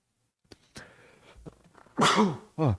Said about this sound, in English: I just sneezed.